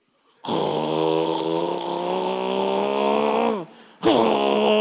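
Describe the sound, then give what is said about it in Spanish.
A voice imitates loud snoring that rumbles like a motorcycle engine, one long buzzing snore that sags in pitch at the end, then after a brief pause another loud snore begins. “Hay gente que ronca como una Harley Davidson.”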